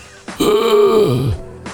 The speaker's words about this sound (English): That's all he does is cough directly into the microphone. He can't turn his face. He can't figure that out.